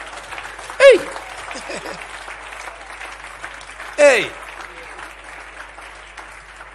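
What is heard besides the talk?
audience clapping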